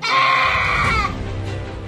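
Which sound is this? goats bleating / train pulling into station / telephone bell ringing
goats bleating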